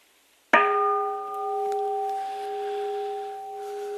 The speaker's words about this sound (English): Same as if I ring the bell.